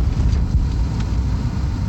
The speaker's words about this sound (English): Right now, I'm driving a police car. And we're going up a one-way street. That's cool.